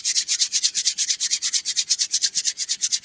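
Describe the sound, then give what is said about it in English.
Hands rub together quickly in a steady back-and-forth, making a bright, hissing friction sound that pulses about eight times a second, as a person seated in a chair follows an instruction to rub the hands faster. No one speaks. “Bring your hands together and quickly rub them. Rub your hands together faster.”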